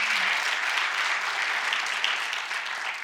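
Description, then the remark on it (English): A church audience breaks into loud, sustained applause in praise of God during a morning sermon, a dense wash of many hands clapping steadily for about three seconds with no voices standing out. “Would you give him the loudest applause of the morning?”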